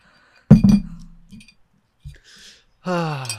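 glasses clinking

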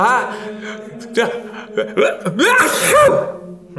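sneeze

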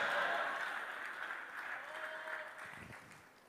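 audience clapping and shouting

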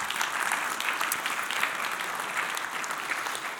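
audience applauding

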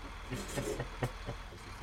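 truck engine running

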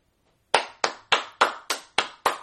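hands clapping

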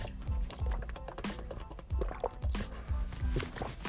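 drinking water

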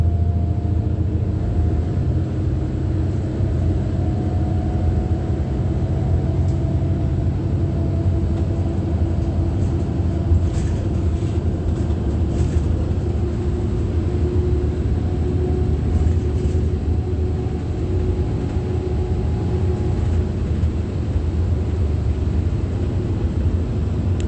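bus driving by

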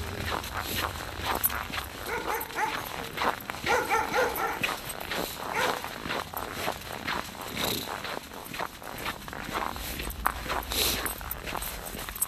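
dog barking and whimpering

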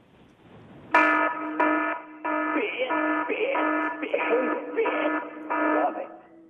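alarm bell ringing

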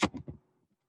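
typing on a keyboard

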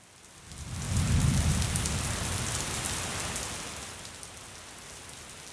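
heavy rain falling

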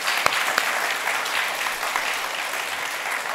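audience praise clapping

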